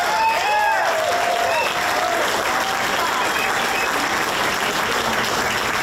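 A large crowd at a gathering claps for themselves and those around them, steadily and loudly for several seconds. It is a dense, even wash of applause, with a few whoops and whistles rising over it near the start.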